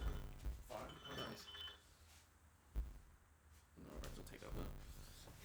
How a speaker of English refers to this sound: My light phone ringtone. Nice, it's light.